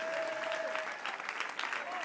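An audience claps their hands in a steady, dense burst of applause that fills the whole two seconds, with a faint sustained tone running beneath it.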